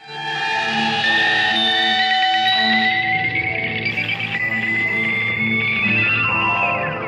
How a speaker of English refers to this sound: Again, he's using some kind of a metal slide, probably his Zippo lighter, high up the strings with that Benson echo to create those chirping sounds.